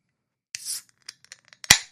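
A can of Coors Banquet beer is cracked open at the start of a show: a short fizzy hiss and a few small metallic clicks lead up to one sharp, loud pop of the tab, with no voices.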